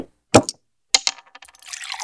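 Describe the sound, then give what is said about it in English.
Several sharp glassy knocks and clinks ring out, followed by a run of small ticks and a soft splashing pour of a drink into glasses. No one speaks. “How about one last drink?”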